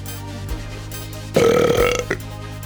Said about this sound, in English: Don't mind that I just burped.